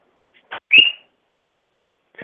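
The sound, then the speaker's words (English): Chickens screaming in short, shrill bursts: a brief squawk, then a louder piercing high-pitched cry, and after a pause another squawk starting at the very end. No one speaks. “Sorry to take you off speaker so that you don't catch the screaming chickens in the background.”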